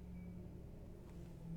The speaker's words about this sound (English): Shout out to the loud-ass truck that just drove by. Why are they so loud? Is it engine-related? Engine exhausts. Trucks are annoying.